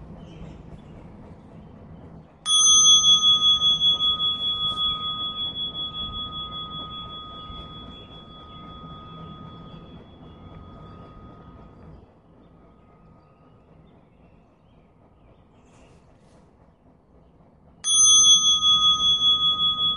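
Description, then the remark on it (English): A meditation bell is struck, its bright ringing tone lingering and slowly fading for about ten seconds, then struck a second time near the end, over a faint low background hum. “And I'll ring the bell several times.”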